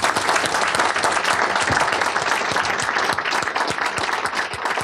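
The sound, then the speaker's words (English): An audience at a Politics and Prose bookstore event bursts into sustained applause after the last question, a dense, steady wash of many hands clapping at even loudness throughout, with no voices standing out above it. “This gentleman's dying to applaud. I'm dying to let you.”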